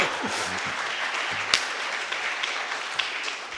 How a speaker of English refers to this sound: And I did it. You should be clapping for me.